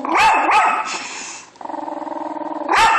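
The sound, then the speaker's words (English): A scared dog barks sharply a few times, then lets out a steady rumbling growl with a rapid, purr-like pulsing texture before breaking into another loud bark, with no talking. “Now you hear that like purring part? Yeah. That doesn't sound like purring. Well, I know, but it's a growl, right?”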